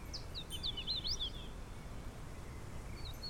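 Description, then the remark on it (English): A hooded warbler sings a short, bright series of whistled notes in the first second and a half, fairly faint over a low outdoor rumble, with a soft call near the end. “No, that's a hooded warbler.”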